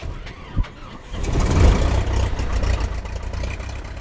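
The engine of a lightweight two-seat experimental Super Cub plane in southeastern Utah catches after a brief quiet moment and a single soft thump, swelling into a loud, steady low droning roar that holds to the end.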